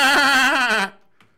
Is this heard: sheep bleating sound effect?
yes